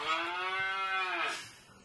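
A contestant's quiz buzzer goes off as the buzzers are tested around the table, playing a single loud cow moo that holds a steady, low, droning pitch for over a second before trailing away. No one speaks over it.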